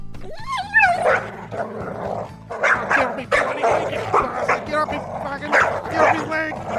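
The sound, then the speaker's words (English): A dog named Rover barks and yelps excitedly, a string of sharp, high yips and barks coming in quick, uneven bursts. “He's a bloody dog.”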